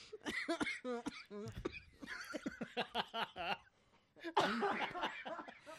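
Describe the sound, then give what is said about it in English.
A woman's fitful coughing tangled with breathy laughter, several short bursts in a row, then a pause before a final rough, louder fit of coughing. “Oh, there she goes with the coughing.”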